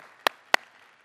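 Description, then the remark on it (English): An audience gives a hand clap for Jesus after a prayer: two crisp, sharp claps about a quarter second apart, loud against a faint background hum, with no talking. “Can we just give a hand clap for Jesus?”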